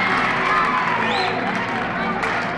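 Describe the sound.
A crowd of about 100 spectators in a high school gym somewhere in America cheers and shouts continuously, with whoops and high voices rising over a dense, echoing roar, loud throughout.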